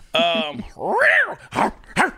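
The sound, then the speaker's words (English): A person imitates a bulldog with four loud, gruff barks: a long throaty growl-bark, a rising howl-like woof, then two short clipped yaps. “I'm sorry, that's a bulldog.”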